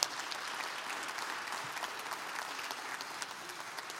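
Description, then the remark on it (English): A crowd applauds steadily, a dense wash of clapping hands with some cheering mixed in, sustained at an even level throughout without any talking. “So let's cheer them on.”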